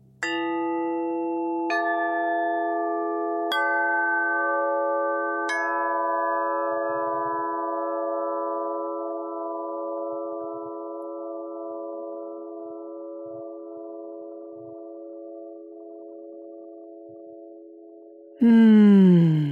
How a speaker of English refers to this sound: The chimes are lovely. I'm already breathing easier and opening to the possibility of softening, being more relaxed.